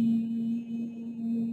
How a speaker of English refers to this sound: A little vocal warm-up that you can do for yourself is humming, working in the lower third with this chest resonator on a Y-E sound.